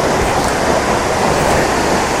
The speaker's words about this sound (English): Now, the waterfall I was at in the last episode was loud, but this is going to be absolutely cacophonous. There's no way that I'm getting very close.